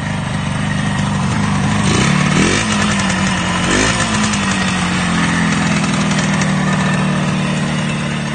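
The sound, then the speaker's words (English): A Yamaha YDS motorcycle engine idles loudly, its steady drone broken by two quick revs early on before settling back into a rough, even idle. No voices. “I know I keep anthropomorphizing this motorcycle, but it did seem like the YDS had been waiting”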